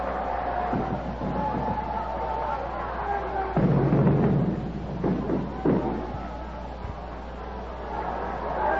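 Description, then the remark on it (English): Stadium fireworks set off after Sal Bando's home run in a game against the Yankees: a few booming bursts, a loud one followed by a couple of sharper pops, rise over a steady roar of crowd noise, as a smoke bomb is thrown from the stands toward the field. “Sets off the fireworks, and there's a smoke bomb or something being thrown out toward the field from the stands, but it goes off harmlessly in the air.”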